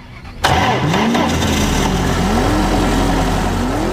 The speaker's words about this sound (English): If you are living in an Indian city, look around you. Look at all the pollution causing, oil guzzling two-wheelers, cars and SUVs, and listen to the awful noise pollution of these vehicles.